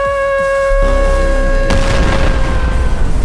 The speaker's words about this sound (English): That was a big explosion. Was there any survivors?